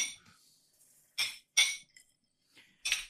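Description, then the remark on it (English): Glasses clink together three times in a toast, bright ringing taps, two in quick succession and a third a moment later, with no talking. “You know what, boys? I'm going to raise my glass.”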